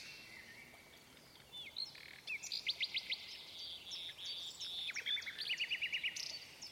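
A nightingale sings alone, a bright run of rapid, repeated whistles and fast trilled phrases, clear over a faint background hiss.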